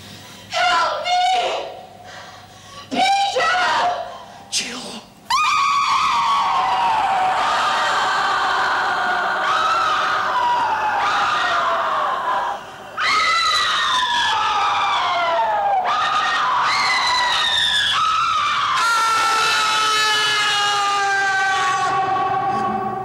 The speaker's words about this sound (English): And of course, there you have one last bit of overacting, a very close-up scream.